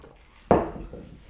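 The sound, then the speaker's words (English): A single clink of glasses touching in a toast over drinks, a sharp knock followed by a short fading ring, with no one speaking. “Let's have a drink. Let's do it. Cheers.”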